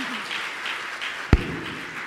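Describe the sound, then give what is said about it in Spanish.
A church audience applauds the Lord and the worship group, a steady wash of many hands clapping at moderate volume, with one sharp, louder clap or knock standing out partway through. “Un aplauso fuerte, hermanos.”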